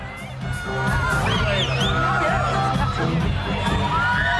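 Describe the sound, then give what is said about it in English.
A loud, dense concert crowd cheers and roars throughout, with a woman's high-pitched excited screams rising above the din in short bursts near the start as she is helped up onto the stage. “This guy's helping her up. She can't believe it. Look at her. She's screaming.”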